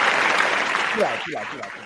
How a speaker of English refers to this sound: Applause and all.